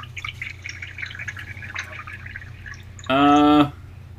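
Water trickles and splashes lightly into a glass for a few seconds, then a brief, louder ringing gurgle rises as the glass fills. No one speaks.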